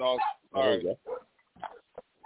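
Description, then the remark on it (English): A dog barks several times in quick, uneven succession: two longer, strained barks followed by a few shorter, clipped ones, muffled, with no one talking. “Sorry, the dog started barking.”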